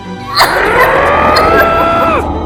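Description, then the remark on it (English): A single loud, sustained scream, holding a strained high pitch for about two seconds before sliding downward and cutting off, over a rough, noisy background. “A scream.”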